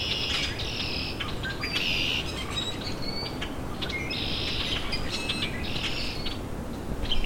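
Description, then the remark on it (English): Several common grackles give repeated harsh, squeaky calls in bursts over a steady background rush of wind or water, the calls overlapping at times. “So Now I've got several common grackle around me.”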